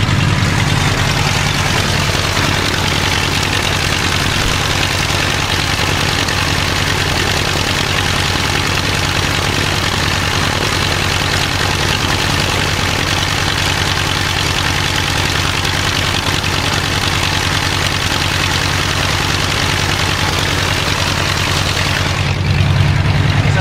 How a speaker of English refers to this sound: from here, on a normal day, you probably idle it for 3 or 4 minutes before you're ready to take it out, taxi it out for a run-up.